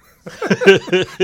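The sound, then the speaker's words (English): A voice imitates a small cough caused by a popcorn kernel skin caught in the throat, in a theater: a quick series of four short, voiced, throaty bursts, fairly loud, with no talking alongside. “I had to cough. And I let out the breath and I coughed a little and it went something like, and it was like a little too loud.”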